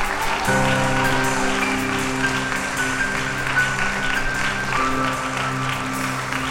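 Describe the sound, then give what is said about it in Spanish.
An audience claps steadily for the King after a prayer, a dense wash of applause while sustained organ or keyboard chords ring underneath, shifting once partway through. “¿Alguien puede dar un aplauso al Rey?”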